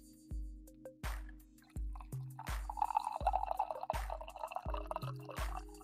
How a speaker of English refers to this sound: There we go. Strong coffee pour.